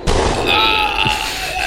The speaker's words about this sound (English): Yeah, can you hit the gunshot button for me? And then just fall over dead.